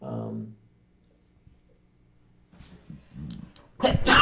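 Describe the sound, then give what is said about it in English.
A loud, sudden sneeze bursts out near the end, after a quiet pause and some muffled talking. “Bless you.”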